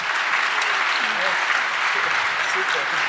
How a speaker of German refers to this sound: Vielen Dank. Ganz toll. Nochmal extra Applaus. Das war super.